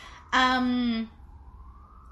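An emergency siren blares in a loud, steady harmonic wail for about a second, then drops away to a faint, slowly rising tone; a siren passing outside, across the street from a hospital, during the COVID-19 pandemic.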